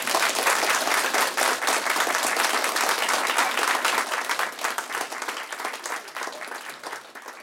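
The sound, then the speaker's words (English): An audience breaks into sustained applause for the speakers, a dense wash of many hands clapping at once, loud and steady for several seconds before gradually thinning and fading toward the end. “So let's have a round of applause for them.”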